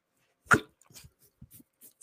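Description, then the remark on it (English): A dog gags and retches: one loud, harsh heave followed by several smaller, choppy hacking spasms, with no one talking. “Girl, man, you ain't about to throw up on me. Don't do that shit over there. Don't you throw up on my dog.”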